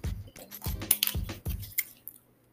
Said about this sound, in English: hold on, let me drink some water.